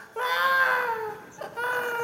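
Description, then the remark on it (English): A newborn baby cries in two high-pitched wails in quick succession with a brief catch of breath between them, loud, with no talking. “I mean, from the first moments of our newborn existence, we fill our lungs with air and we cry.”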